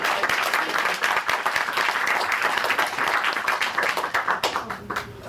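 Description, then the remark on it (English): An audience applauds steadily for several seconds as a panelist, a writer at the AV Club representing Archer, is welcomed; dense overlapping claps at a fairly loud, even level before tapering slightly near the end. “Fifth panelist is a writer at the AV Club and representing Archer, and I think he deserves an especially big round of applause.”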